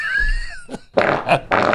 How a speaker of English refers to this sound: I put my fart bag away now. It's in a cupboard.